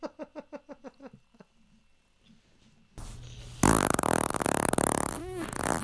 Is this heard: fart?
yes